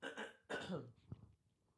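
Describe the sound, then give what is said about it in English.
A loud throat clearing in two rough, guttural bursts, one right after the other, followed by a brief faint click and quiet, with no talking. “I just noticed that my mum clears her throat a lot. And I think I've noticed that I also clear my throat a lot.”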